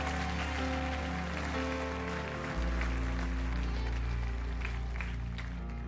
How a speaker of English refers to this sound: If you believe that, give the Lord a clap offering.